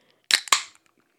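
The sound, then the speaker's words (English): A beer can being opened with two sharp, loud metallic cracks in quick succession, each dying away fast, and no fizz or hiss afterward. Nobody speaks. “Why was there no hissing in that beer?”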